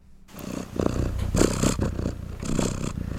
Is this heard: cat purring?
yes